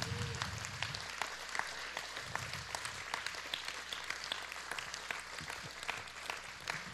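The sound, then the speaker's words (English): A church audience claps their hands for the Lord in a dense, sustained round of applause, many sharp overlapping claps blending into a steady wash of sound with a faint murmur of voices underneath. “You need to give the Lord a hand clap tonight.”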